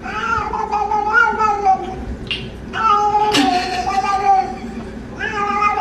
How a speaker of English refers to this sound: It is not a puppy. It is a cat getting scratched on the back.